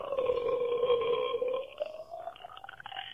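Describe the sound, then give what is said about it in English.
Arm fart sounds: one long, buzzy, rubbery blat lasting over a second, followed by a few shorter sputtering squelches, with no talking. “Some arm fart sounds from ….”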